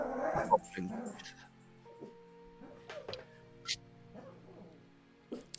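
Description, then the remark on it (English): Several dogs give short, scattered yips and whimpery barks, with a quieter low rumbling growl and faint background noise between the bursts. “My dogs are kind of. They're rumbling.”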